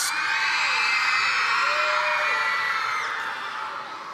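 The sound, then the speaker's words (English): A large crowd, with the lights turned off, screams and yells at the darkness together in a sustained, loud roar of many overlapping voices, holding steady for several seconds before tapering slightly at the end. “Now scream at the darkness, see if it goes away.”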